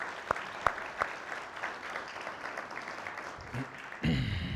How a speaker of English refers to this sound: Let's just give them another round of applause.